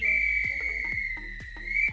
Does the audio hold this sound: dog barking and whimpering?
no